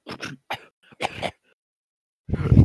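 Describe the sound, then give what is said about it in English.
A voice imitates a sputtering, coughing engine, a Speed Buggy cough noise likened to the sound of clicking on social media DMs: a few short choppy bursts, a pause, then a louder rough burst at the end, fairly loud with no actual words. “Every time I click on my DMs for like something like that, it's like it makes a speed buggy cough noise.”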